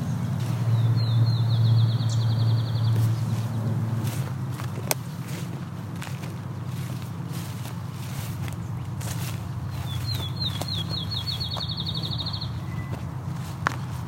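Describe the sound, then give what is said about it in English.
Sharp, scattered tick calls from many field sparrows, ticking at a person, ring out at irregular intervals over a low outdoor rumble, with two brief high, accelerating bird trills. “A lot of field sparrows here, ticking at me.”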